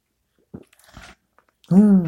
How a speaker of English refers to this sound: I am here with my first cup of coffee. First sip.